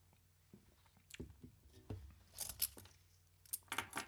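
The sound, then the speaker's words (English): Quiet sipping from a drink: a few soft clicks and handling taps, then brief slurping, swallowing bursts near the end. No one speaks. “I'm just going to take a sip of drink.”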